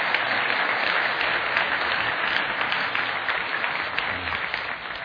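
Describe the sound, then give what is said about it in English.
A church audience claps in thanks to Evangel Temple, dense overlapping hand claps forming a loud, sustained wash of applause that holds for about five seconds and tapers slightly at the end, with no voices standing out. “And so as we thank Christ Community, can we just give a hand clap of thankfulness to Evangel Temple for their generosity?”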